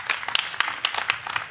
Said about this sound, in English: Golf clap.